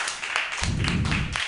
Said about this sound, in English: Clap if you're familiar.